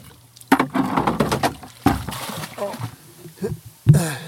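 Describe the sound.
Oars dip and pull through water in a few uneven strokes, each with a splash and wooden knock, with faint voices murmuring in between, as a boat is rowed out of shallow water onto a bay to meet a police boat.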